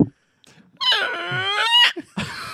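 A squeaky door creaks open in one long, loud, whining squeal lasting about a second, its pitch holding high and steady, followed by a brief soft rustle.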